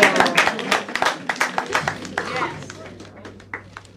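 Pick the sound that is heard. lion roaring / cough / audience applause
audience applause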